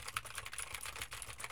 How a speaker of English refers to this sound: Now I am typing on a keyboard with Gateron blue switches to see how much of my voice versus how much of the keyboard it picks up.